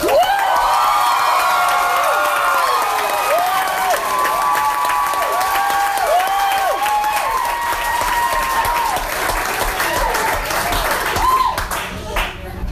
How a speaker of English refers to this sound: I have not heard so many fans in unison shrieking and screaming at the same time in my life.